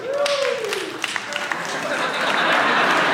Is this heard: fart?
no